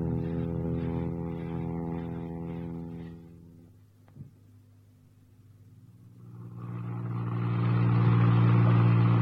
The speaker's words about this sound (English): Well, you whip me away in the late afternoon, fly me to Ireland in the pitch dark, land me in a field, dump me in a car, and drive off into the depths of the forest.